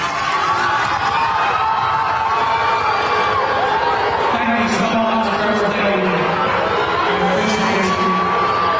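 A large crowd at a school in Baltimore shouts and boos in a dense, continuous roar at an event on opioid awareness, with low drawn-out jeers swelling in the second half and scattered higher yells on top, loud throughout.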